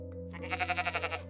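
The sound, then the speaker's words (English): A pregnant, exhausted sheep in dystocia, barely able to walk and being dragged by an older woman, lets out a single, wavering bleat lasting about a second, its voice quivering in rapid pulses. No talking is heard alongside it. “she was kind of like dragging this half alive sheep, you know, that could barely walk.”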